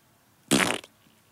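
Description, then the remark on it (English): A single loud, buzzy fart noise bursts out for about a third of a second, raspy, then stops abruptly, leaving near silence with no talking. “It wasn't even a good fart, noise.”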